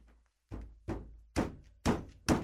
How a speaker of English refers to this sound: For some reason, I'm just going to bang my head against the desk.